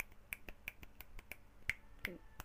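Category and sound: human body sound, finger snapping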